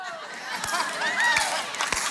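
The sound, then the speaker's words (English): An audience breaks into scattered clapping and cheering, a few sharp claps standing out over a loud, continuous crowd murmur with excited voices mixed in. “Don't clap. Do not clap.”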